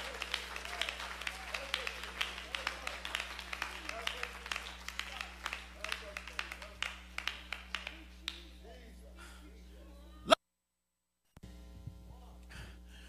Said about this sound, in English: Clap your hands and worship the Lord for a moment.